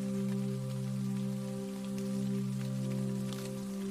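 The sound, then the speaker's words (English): Scattered raindrops patter and plip into a few small puddles outside a bakery's front window, an uneven, gentle tapping over a steady low droning hum. No one speaks. “She looks out from the front window for a moment, watching and listening as the raindrops plunge into a few small puddles.”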